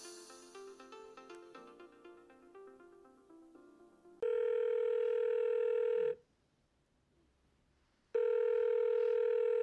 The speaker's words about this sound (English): Wait. Let the phone ring.